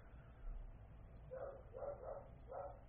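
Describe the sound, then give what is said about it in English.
A female dog barks four times in quick succession after a doorbell rings, short sharp barks around a steady rhythm, over a low background rumble. “But this means she's going to just sit where she is and just bark.”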